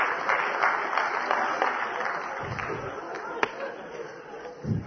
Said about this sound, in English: What are you clapping for?